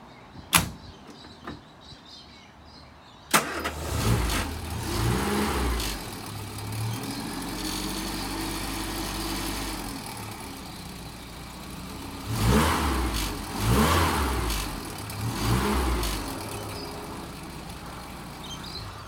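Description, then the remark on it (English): A few sharp clicks, then the engine of a classic Mini Clubman with a single SU carburetor cranks and catches, settling into a low, steady idle before being revved three times, each rise loud and throaty, with no one talking. “We'll just pause here for a second, just get some, just watch you get starting there up and just hearing this beast purr.”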